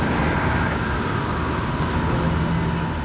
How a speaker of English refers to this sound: car and trucks honking on the neighboring streets